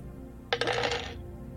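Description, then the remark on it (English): Two dice are rolled for a driving check and clatter across a hard surface in a short burst of rattling clicks that lasts under a second and then settles into quiet, with no talking. “That would be 2 dice for me.”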